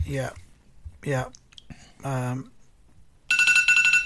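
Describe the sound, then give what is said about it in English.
A few short bursts of a man's voice, then a phone alarm abruptly starts ringing, a loud, shrill electronic trill of rapid high-pitched pulses that continues to the end. “There goes my alarm.”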